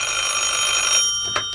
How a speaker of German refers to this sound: Da klingelte das Telefon.